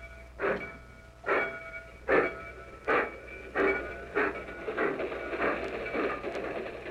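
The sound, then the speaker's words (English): A train bound for Yuma, Phoenix, El Paso and Houston pulls out, its rhythmic chuffing bursts starting evenly spaced and gradually quickening until they blur into a steady rumble over a low mechanical hum. No one speaks. “That's my train. I'd better run along.”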